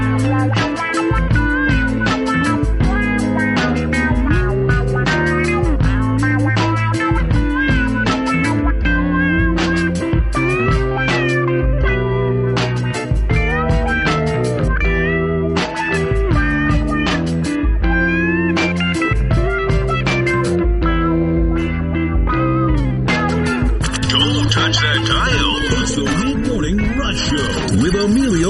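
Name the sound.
hip-hop song playing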